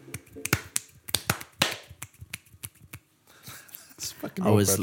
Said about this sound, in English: Is that one-handed? That's a one-handed clap, yeah. One-handed clap. I learned that in the Boy Scouts.